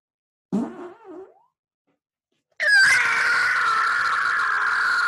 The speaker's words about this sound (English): Did that come through really good? That had to have been the best fucking fart of the whole. Bro. Like, dude, that fucking freedom fart and screech was amazing. That's like the best one I've ever done, dude.